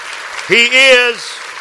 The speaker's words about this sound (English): I think that we need to clap our hands real big one more time before I get in my series, my points here tonight. Come on.